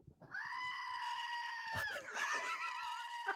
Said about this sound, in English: Max is holding up a little screaming goat toy to the microphone